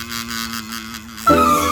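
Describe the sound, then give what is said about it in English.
A bee buzzing from flower to flower in the country on a sunny day, with a steady, droning hum that suddenly grows louder and rougher toward the end, like it's swooping past. “It's a bee. There it goes, buzzing from flower to flower.”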